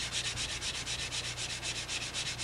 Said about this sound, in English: you just want to get it, just grab a piece of sandpaper and come out and just start sanding.